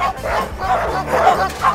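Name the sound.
dog barking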